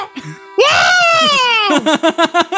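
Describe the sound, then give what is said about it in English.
A person vocally imitates the Genesis sound effect for the elephants on the Dalseem stage from Street Fighter: a loud, buzzy, bright wail that rises and then sags over about a second, followed by five or six short, rhythmic voiced bursts. “Did you ever hear the Genesis sound effect for those fucking elephants?”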